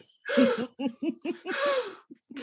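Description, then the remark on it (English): A person lets out several dramatic, breathy gasps in quick succession, fairly loud, with voiced squeaky catches between the sharp intakes of breath. “Audible gasp.”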